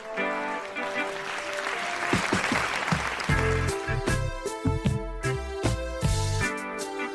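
A burst of crowd applause and cheering swells for a few seconds, then gives way to upbeat music with a steady, punchy beat that carries on loudly to the end.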